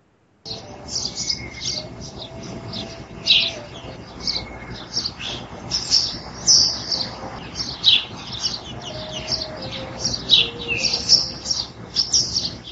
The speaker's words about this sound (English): he sends us a sound clip from his house window which captures the mood of the summer season, he says. And listen to this, it's got birds chirping and far away you have an ice cream truck in the distance.